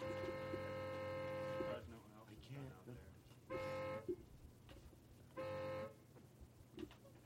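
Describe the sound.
A car horn honks three times: one long, sustained blast followed by two shorter beeps spaced a couple of seconds apart, with faint voices and background noise between them.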